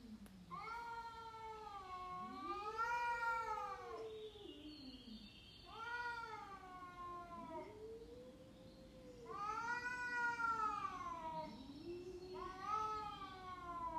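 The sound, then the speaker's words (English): A cat caterwauls in long, wavering, rising-and-falling howls, several drawn-out cries in a row, loud with no talking. “All right, here's the best cat crying noise.”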